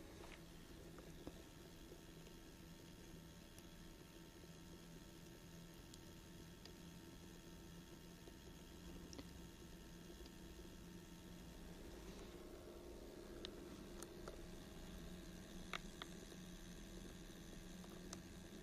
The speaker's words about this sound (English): A little bit of trickling of water that is so charming. I love the hum that this creates and the visual that this creates.